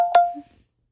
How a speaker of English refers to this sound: It's 6 a.m., so of course I'm getting all the notifications about everything at this moment.